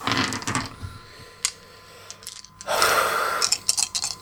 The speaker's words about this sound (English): So I'm going to roll Gnosis 2, Fate 1, Academics 2. So 5 dice.